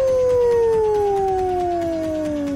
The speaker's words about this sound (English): The Wolf. Ow, ow, ow!